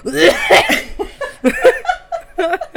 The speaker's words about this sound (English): I feel like it was really cute last time I got sick. This is the second time I've been sick in like a month. Yeah, where's the cuteness? I know this cough. I sound like Candy Muse. I'm just kidding, huh? This cough is not cute.